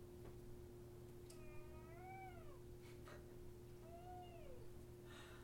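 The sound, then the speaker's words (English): A cat that snuck into a bag meows twice, two drawn-out, wavering cries about two seconds apart, fairly clear over a steady low hum. “Did you bring your cat with you?”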